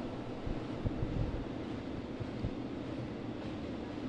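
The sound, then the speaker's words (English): A freight train rolls past with a steady, broad rumble, heavy low-end roar and a wash of hiss above it, holding an even loudness throughout with no voices. “It's a freight train.”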